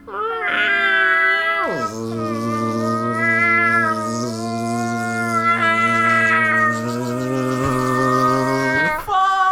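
A feral cat caterwauls in one long, loud, drawn-out yowl that swoops down in pitch early on, then holds a steady wailing tone for several seconds before breaking off.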